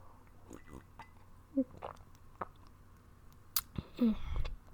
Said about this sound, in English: But I'm gonna take a sip. Hopefully, like ASMR. If not, just skip like through 5 seconds of this.